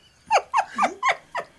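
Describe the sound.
A fake fart made with the mouth: five quick, buzzy voiced bursts in a steady rhythm, each sliding down in pitch, fairly loud and with no talking over them.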